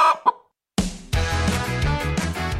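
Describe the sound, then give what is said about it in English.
A chicken gives two quick clucks, then after a short silence upbeat music starts and plays on steadily. “And like most chickens, Chicken Little was a nervous little fella.”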